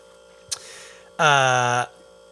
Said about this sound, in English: But, fridge is on. I hate that. I was hoping it wasn't going to come on.